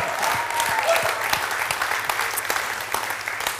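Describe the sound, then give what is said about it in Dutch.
A church audience claps to thank the team, a steady, dense wash of many overlapping handclaps holding at a fairly even loudness throughout, with a few sharper individual claps standing out and no one speaking. “Come on, give them a big hand.”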